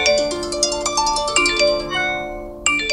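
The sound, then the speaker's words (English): Cell phone beeps and electronic chimes ring out in a quick, overlapping series of bright tones, loud, continuing for several seconds with no voices. “For young people, the constant buzzing and beeping can induce stress and anxiety.”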